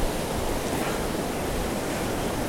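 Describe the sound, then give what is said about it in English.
A continuous, fairly loud wash of ocean surf recorded from within the ocean, a steady hissing roar with no distinct breaks between waves and no voices. “But like, I was recording a podcast in the ocean.”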